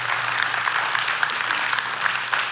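A round of applause from a group at Crossroads thanking the volunteers, steady dense clapping that holds at an even loudness for a couple of seconds with no voices over it.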